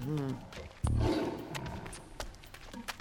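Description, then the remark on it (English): A big cat, a lion or tiger left behind by a circus, roars: a low rumbling growl that swells into one loud, heavy bellow before trailing off into softer grunts and rustling. “What is that? Is that a tiger or something? Lions, tigers, yeah.”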